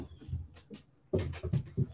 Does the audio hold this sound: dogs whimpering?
yes